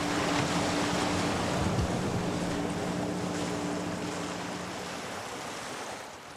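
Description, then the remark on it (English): Broad, rushing water noise with a steady low engine hum as a boat returns to Union Hall through rough sea on a grey, wet day, fast, strong waves sloshing and slapping against the hull, fairly loud, with no one speaking. “The weather conditions have got worse. The day is grey and wet, and the waves are coming fast and strong.”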